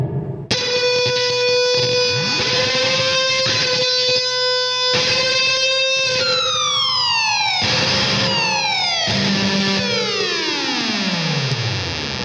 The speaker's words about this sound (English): So it's just a Data Corruptor with a bit of gain and then some reverb, and it's just...